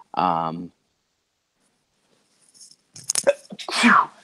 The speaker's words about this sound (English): Oh, excuse me. I couldn't hit the mute button. Sorry about that sneeze in everybody's ear. I felt it coming on for a while too.